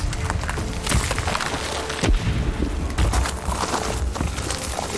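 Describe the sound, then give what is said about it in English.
Three heavy cannon blasts boom out about a second apart, fired from a moonlit harbour quayside on a cool night at a ship leaving the harbour. Each is a sharp, loud burst over a constant rumbling, noisy background, with no voices. “But before the ship could clear the harbour mouth, the cool night air was cut by the report of three cannon blasts.”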